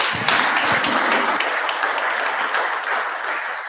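An audience applauds steadily, a dense wash of many hands clapping at once, loud and sustained for a few seconds before thinning slightly toward the end.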